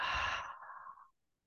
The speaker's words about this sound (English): Can you breathe into that possibility? Again, breathing in, big inhale, an audible exhale out.